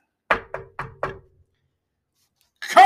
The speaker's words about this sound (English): Then he said goodbye to them all in a cheerful voice and went to the throne room, where he rapped upon the door.